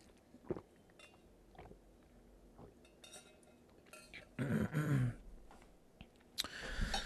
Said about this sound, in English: Let me drink some water.